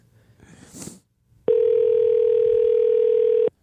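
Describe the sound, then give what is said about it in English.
A telephone ringback tone sounds once on an outgoing call placed via Google Voice to Allenby Roofing, a loud, steady electronic hum lasting about two seconds, preceded by a brief muffled rustle or murmur. “Okay, call it back.”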